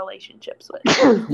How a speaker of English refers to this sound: I don't even know who was sneezing because, like, everybody's kind of low-key frozen for me. That was me. Bless you.